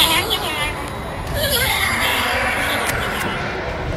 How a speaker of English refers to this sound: you wanna hear what a donkey on crack sounds like? What a what? A donkey on crack.